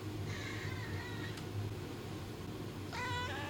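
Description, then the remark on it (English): Two drawn-out meows from Callie, a cat being picked up, fairly loud, the first stretching about a second and the second rising sharply near the end, over a steady low background hum. “You pick her up and then she screams at you.”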